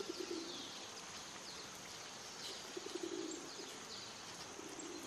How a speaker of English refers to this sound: So let's take a look, listen to a normal rock dove, normal pigeon.